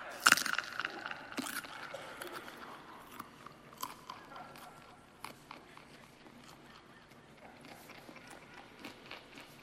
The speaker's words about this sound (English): could I please get my carrot chewing microphone setting, please? Here we go. Ready? Count silently in your head.